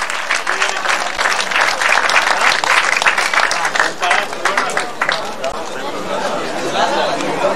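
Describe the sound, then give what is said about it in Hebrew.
A crowd applauds loudly and steadily for several seconds, a dense wash of many hands clapping, with scattered voices and chatter mixed in beneath it. “טוב כפיים, קצת בשעתיים ודקה.”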